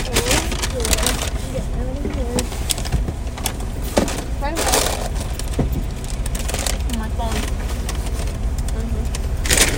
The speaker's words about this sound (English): Wait, leave the car running.